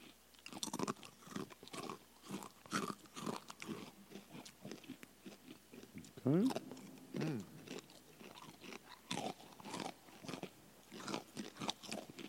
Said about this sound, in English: Yeah, Crunching into the microphone, a brand new segment. Wow.